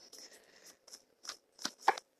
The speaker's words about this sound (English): I'm on the Tarot Mucha deck now. We're shuffling.